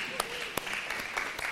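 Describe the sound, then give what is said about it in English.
Light, scattered clapping from a small group applauding a woman, a handful of sharp irregular claps rather than sustained applause, fairly faint against a steady background murmur. “Right, she's just been standing all day, and give her a round of applause, please.”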